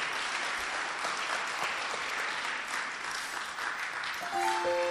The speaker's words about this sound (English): If you are clapping your hands, clap in English and in Zulu